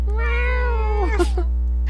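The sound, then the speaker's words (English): A single drawn-out meow, imitated by a human voice, rises slightly then slides down in pitch over about a second, followed by a couple of soft breathy huffs. “What's your best kitty noise?”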